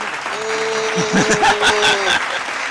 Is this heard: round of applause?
yes